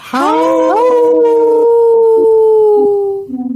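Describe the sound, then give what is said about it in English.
People on the Native Roots Radio show imitate a wolf howl for its Howling for Wolves segment: one long, loud, sustained tone that rises at the start, holds steady for about three seconds, then slowly sags and fades. “Howl! Ooh, good one. Good one. Good one, everyone.”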